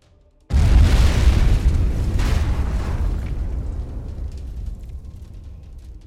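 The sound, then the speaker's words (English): An activated fire-pack bomb explodes against a ballista with a sudden, powerful deep low-frequency boom, sending splintered wood and steel flying, then rumbles and crackles as it slowly decays over several seconds. No voices are heard. “The explosion sent splintered wood and steel flying in all directions.”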